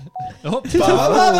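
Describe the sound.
A short, thin beep is followed by a busier run of warbling, tone-like notes, like a phone notification chime. It sounds fairly loud, and much of it may be a voice imitating the tones.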